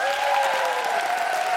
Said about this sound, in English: And can I have a big round of applause for my guest co-host, Margaret Cabourn Smith?